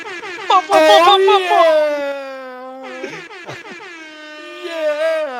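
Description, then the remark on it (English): A voice mimics a rap air horn, used as the 'Lamar Miller horn' for Houston Texans player Lamar Miller: loud, blaring sustained blasts that bend in pitch, with a brief break in the middle before a final blast, alone. “Another rap air horn noise?”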